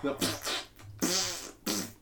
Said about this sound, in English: What about the guy that talks and farts?